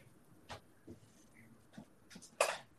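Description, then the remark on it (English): A pencil scratches across paper in several short, quiet strokes spaced irregularly, ending with a slightly longer, louder scrape, as a spiral shape is drawn starting in the middle and working out toward the edges. No talking. “You can do this a lot of ways, but I'm going to draw kind of a spiral shape starting in the middle and just working my way out toward the edges.”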